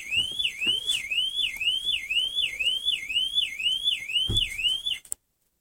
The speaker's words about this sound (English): Oh, listen, an alarm. I kid you not, that is a real car alarm going off beside me.